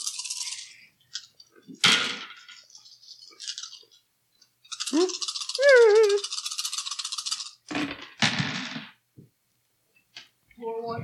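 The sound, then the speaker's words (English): Dice rattle and clatter in several bright bursts, with a longer tumbling roll in the middle, one die falling onto the floor; a voice briefly murmurs and exclaims between the rolls. “Floor die. Floor one doesn't count.”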